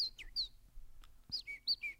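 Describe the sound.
A person whistles a convincing imitation of a bird's song: a quick run of high, bright chirps and swooping tweets in two short bursts, fairly loud, with no talking.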